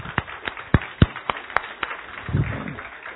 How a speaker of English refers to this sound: And the core group that started here are still here. Amen. God, give them an applause. Can you do that?